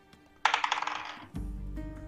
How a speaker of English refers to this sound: Just roll d20. Just roll d20.